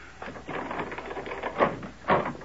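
A front door is opened, with a rattling latch and handle followed by two sharp knocks or thuds against a quiet background.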